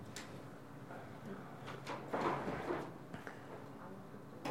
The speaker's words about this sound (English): Oh, I don't know. The door is stuck, maybe.